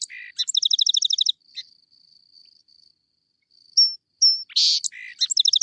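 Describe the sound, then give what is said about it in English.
A song sparrow sings alone in clear bursts: quick rapid trills of buzzy notes, a few sharp whistled chips, then another rattling trill, all fairly loud against silence. “So that's the song sparrow.”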